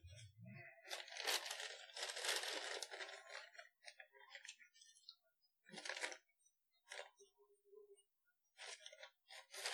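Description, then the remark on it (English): Crinkly rustling of a brown paper bag holding a gift being handled, with a dense burst of crackling at first, then shorter scattered crinkles and pauses, no voices. “That's the gift. It's the brown paper bag, huh?”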